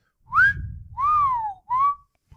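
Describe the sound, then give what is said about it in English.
Someone whistles a short tune of three sliding notes, the whistled melody of a song, clear, over a low background rumble, with no talking. “Whistle song, right?”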